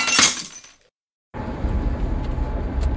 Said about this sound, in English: Some people like to break the ice. I like to break the glass.